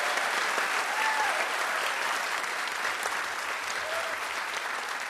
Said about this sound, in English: Yeah, and then people clap for me. Right. You know what I mean? Right. Like, they don't clap for them. Yeah. They clap for me.